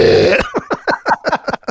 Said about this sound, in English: Except my sister had to burp, so it came out. We've got the power. And it was so freaking funny. It was just a burp. It was just a big old burp right in the power part. Pow!